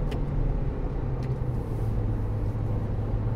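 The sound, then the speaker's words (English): A car engine hums steadily from inside the moving vehicle, a low, continuous rumble with road noise underneath and a couple of faint clicks, no voices. “But you know, listen to that baby purr. I love driving this car.”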